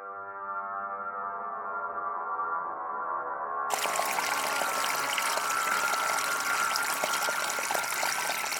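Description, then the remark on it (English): A low, steady humming drone gives way abruptly to loud, rushing water pouring and splashing continuously and full, with no voices. “Marlene awoke to the sound of cascading water”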